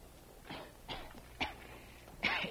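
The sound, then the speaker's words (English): A boy, Jerry, wakes in a cave coughing from the smoke of a forest fire. He coughs four times in short, harsh, breathy bursts at uneven intervals, the last one the strongest, with no talking around them. “Later, in the cave, Jerry awoke, coughing.”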